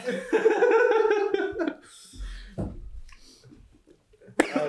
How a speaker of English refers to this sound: Damn, bro. Every podcast, huh? Every podcast. This guy's coughing up a storm.